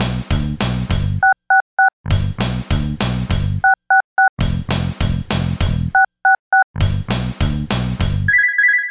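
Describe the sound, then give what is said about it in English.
Touch-tone dialing of 666 on a landline telephone: three quick sets of three short two-tone beeps, separated by loud, buzzy bursts of a rhythmic electronic sound, ending on a brief high tone. No one speaks. “It's time to punch those touch tone buttons and make a call on the landline of the damned.”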